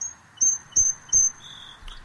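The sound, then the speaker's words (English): A bird, heard on the way back to a car at a craft fair, calls with three sharp, evenly spaced high whistled notes, then a softer, lower drawn-out note and a brief final chirp over faint background hum. “On my way back to the car to get a couple items for my display, I came across this bird.”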